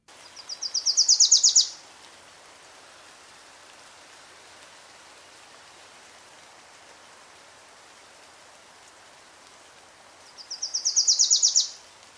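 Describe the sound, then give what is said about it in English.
A Wilson's Warbler sings two short bursts of rapid, chattering repeated notes that grow louder and more insistent and then stop abruptly, several seconds apart, over a steady hiss like light rain. “So here's a Wilson's Warbler singing.”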